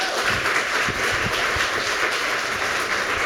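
An audience breaks into a round of applause, many hands clapping in a dense, steady wash of sound that stays fairly loud and even for several seconds, with no voices standing out.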